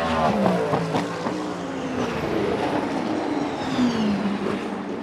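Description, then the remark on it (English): A loud LMH or LMDH prototype race car engine roars steadily with layered whining harmonics, its pitch sliding downward as the car sweeps past on the track. No voices. “With the freedom to design these cars differently and use different powertrains, LMH and LMDH cars all look distinctly different from one another, and they sound unique as well.”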